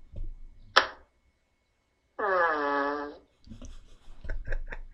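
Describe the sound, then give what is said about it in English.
A single soft, drawn-out, buzzy fart played from a video, lasting about a second, with a steady tonal quality, heard alone after a sharp click, followed by faint rustling and muffled noises. “And this is the fart I will play.”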